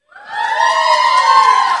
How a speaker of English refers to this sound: Nice. Thank you. Yes. We should cheer for the word. I love that.